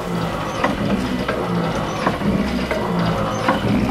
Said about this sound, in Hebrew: מים החלו להציף את הספינה מבפנים. החיילים המתוחים יערו להביא משאבה בניסיון לשאוב את המים החוצה.